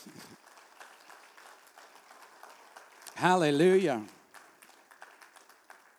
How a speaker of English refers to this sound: Can you give God a hand clap of praise?